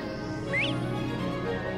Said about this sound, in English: There are all these birds like... Oh, bobwhites in the background. Bobwhite quail.